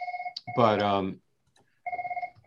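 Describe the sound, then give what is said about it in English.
A phone rings with a fast, warbling electronic trill in two bursts, clear, separated by a short vocal exclamation and a moment of silence. “for the simple reason that bat phone. Yeah, it is. It's actually Sal Palantonio.”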